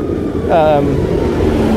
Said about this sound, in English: it's a big tractor here. So they're working... That's probably already for the harvest